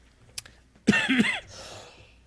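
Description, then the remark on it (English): A single harsh cough bursts out with a rough, raspy throatiness, then fades into a breathy tail. A faint tap comes just before it, and no one speaks. “And I'll cough. I can't even talk.”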